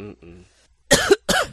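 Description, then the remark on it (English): A brief low voiced grumble, then two loud, harsh throat-clearing coughs in quick succession, as someone clears dust from their throat. “I gotta go clear my throat out.”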